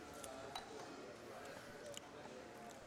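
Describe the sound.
Glasses of ruby port clink together in a toast, a few light, bright taps with a short ring, set against a steady murmur of background noise and faint voices.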